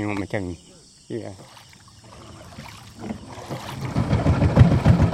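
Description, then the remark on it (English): A small wooden outboard motorboat chugs down a canal toward Gaung River through water brown from peat tannins, its low, pulsing engine noise swelling and growing louder, after a couple of brief voice fragments at the start. “steers a wooden outboard down his canal toward Gaung River, cutting through water brown from the tannins in the peat.”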